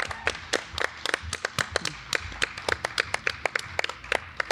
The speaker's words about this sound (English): Everybody think about what they are going to get from this festival. And on the count of three. One, two, three. Clap it out.